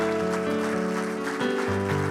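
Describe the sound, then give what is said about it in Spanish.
Congregation applause during a church service, given to the King, a dense and steady clatter of many hands, runs beneath sustained keyboard chords that shift to a lower harmony partway through. “Denle un aplauso al Rey.”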